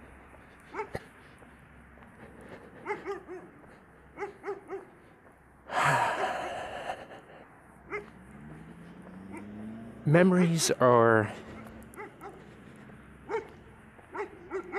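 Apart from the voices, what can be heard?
dogs barking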